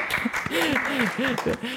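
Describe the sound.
A run of sharp hand claps in a fairly steady rhythm, about six or seven in under two seconds, mixed with a voice making rising and falling vocal sounds over them.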